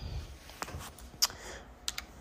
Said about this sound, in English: Okay, that's me typing.